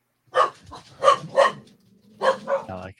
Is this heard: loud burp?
no